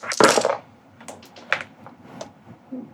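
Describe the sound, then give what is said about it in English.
Four damage dice, two six-sided and two eight-sided, tumble onto a hard table in a loud opening clatter, followed by a few sharp, scattered clicks as they bounce and settle. No one speaks. “You roll 4 dice.”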